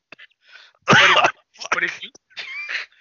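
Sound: coughing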